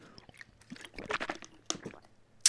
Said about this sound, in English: Sorry, I just had to take a sip of water.